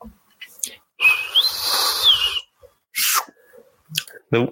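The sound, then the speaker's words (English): A voice imitates the Star Trek sliding door: a breathy, hissing whoosh of about a second and a half with a thin whistling tone that rises then falls, followed by brief mouth noises and short vocal sounds. “Do you know the best noise for the doors for Star Trek?”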